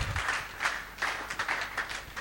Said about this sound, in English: So shall it be in the name of Jesus. Let's clap for her again.